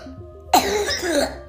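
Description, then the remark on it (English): A single harsh cough in the morning bursts out abruptly and rasps on for about a second, with faint low background hum before it and no talking. “Oh, sounds like you got a little cough this morning.”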